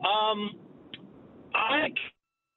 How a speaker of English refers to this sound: Your phone's bad. I'm going to put you on hold because you've been waiting a while. I'm going to put you on hold, my guy.